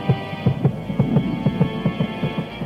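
A rapid, pounding heartbeat thumps in steady double beats over a low droning hum, heavy, with no voices.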